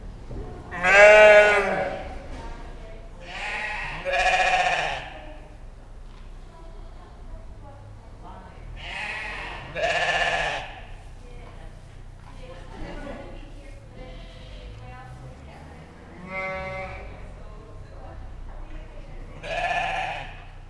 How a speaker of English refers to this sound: I travelled to Woolfest back in June and didn't get any podcasting done, obviously, while I was on the road, although I did manage to record the Woolfest sheep.